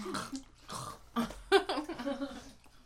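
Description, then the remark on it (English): Wet chewing of soft, gummy candy that is not very sticky, with irregular smacks and squelches spread across a few seconds, plus faint murmured mouth sounds in between. “They're not that sticky. They're better than like now and later. We're just chewing away.”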